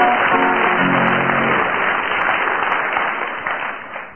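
An audience claps steadily in a dense, loud burst of applause that fills the whole clip, with a few tonal cheers or whistles rising briefly near the start before it begins to thin.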